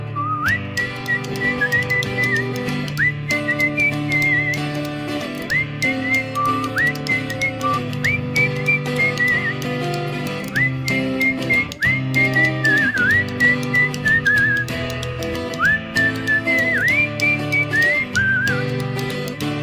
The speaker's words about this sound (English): Whistle solo.